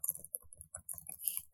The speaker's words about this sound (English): You hear me typing. Hold on.